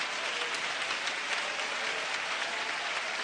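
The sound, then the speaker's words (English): A church audience claps their hands in praise of God, a dense, steady wash of many hands, with no break in the sound across the whole stretch and no voices standing out. “Somebody clap your hands with me and praise him.”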